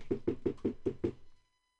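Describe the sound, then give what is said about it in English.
Six quick, evenly spaced, firm knocks on the wooden chamber door of a judge's chambers in a courthouse, followed by silence. “We hear a knock on the chamber door.”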